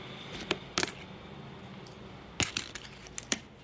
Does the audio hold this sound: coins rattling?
yes